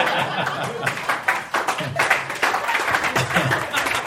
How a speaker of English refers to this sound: That smattering of applause is people being like, I think it's done.